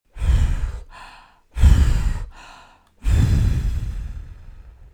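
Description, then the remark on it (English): A voice imitates the wolf in the Three Little Pigs story huffing and puffing at the brick house: three loud, forceful breathy blows, evenly spaced, each bursting out strongly and trailing off into a softer, airy exhale. “The wolf huffed and he puffed and he puffed and he huffed.”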